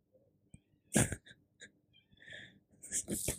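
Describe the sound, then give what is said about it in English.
A cat makes agitated noises in a string of short, uneven bursts, some sharp and hissy, others higher and whiny, moderately loud with brief quiet gaps between. “Cat's going crazy.”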